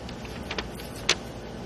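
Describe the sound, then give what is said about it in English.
A color laser printer prints a full-color picture of a baboon, running with a steady mechanical whir, broken by a few soft clicking strokes and one sharper click toward the end. No one speaks. “Tibor, that graphic is pretty impressive coming out of this printer.”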